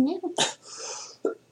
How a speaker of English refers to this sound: You know, I coughed once in about 30 minutes, and then we started that podcast, and I've coughed probably 5 times. I think that's honestly the cough, just my body being like, you're not allowed to have normal social interactions this week.